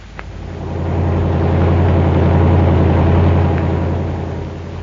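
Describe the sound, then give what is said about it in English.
A fast car's engine hums steadily as it drives to make a call at Twin Oaks, its low drone swelling up after the first second, holding strong, then easing slightly toward the end. No voices. “Got a fast car. We're making a call at Twin Oaks.”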